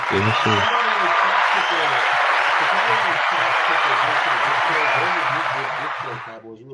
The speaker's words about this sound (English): No, I was saying you couldn't hear over the applause.